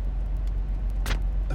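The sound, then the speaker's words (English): Steady low rumble of a car cabin on the move, with constant road and engine drone and a brief brighter hiss of passing noise near the end; no one speaks. “This is a special podcast. I'm podcasting from my car.”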